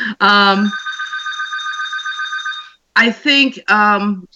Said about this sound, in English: And that's going to go to the service, so don't worry about that phone. That's all right.